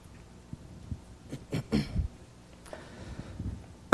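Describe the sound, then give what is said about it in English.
A person coughs a few short, harsh coughs in a quick cluster, followed by a softer throaty rasp, with quiet background noise in between; the cough comes from lungs affected by a recent flu. “That's why I'm coughing, so please excuse me about that.”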